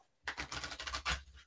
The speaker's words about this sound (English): So on that, I'm going to do my quick card reading here. And because we talked about Pachamama, I grabbed my Earth Magic cards. So I'm going to shuffle these and I will pull one.